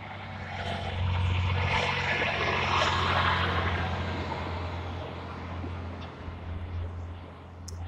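A big truck rumbles past, its deep engine drone and broad roar swelling over the first few seconds, then slowly easing off while staying fairly loud throughout. No one speaks.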